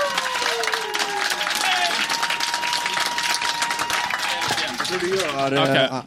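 Loud, sustained applause from a crowd, dense clapping with cheers and whistles rising over it, continuing steadily for several seconds before tapering at the end.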